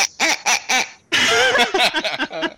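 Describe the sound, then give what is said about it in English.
A 'Rick's wrong' duck quacking sound effect: three short, evenly spaced quacks, a brief pause, then a rapid, loud string of nasal quacks that sounds clear, with no talking. “Is that the Rick's wrong duck?”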